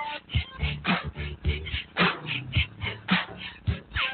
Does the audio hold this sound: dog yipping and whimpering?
yes